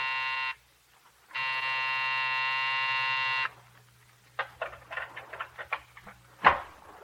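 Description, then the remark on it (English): A harsh, rasping night buzzer of an office building sounds twice, a short burst and then a longer, steady growl of about two seconds, followed by scattered clicks and a sharp knock. “It sat square and solid on its haunches, and when you pressed the night buzzer, it growled at you.”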